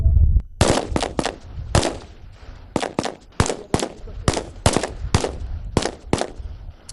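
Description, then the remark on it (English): Rifle gunfire on a firing range during ranger training, fired on the command to fire: a string of about a dozen loud, sharp cracks, fired one at a time in an uneven rhythm, each ending with a brief echoing tail. “Stand by. Fire!”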